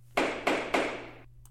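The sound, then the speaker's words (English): A judge's gavel sound effect: three sharp wooden knocks in quick succession, each bright and percussive with a short ringing tail, the last one fading out over a low steady hum. “I'm going to click on Judge's gavel hammer sound yes, effect.”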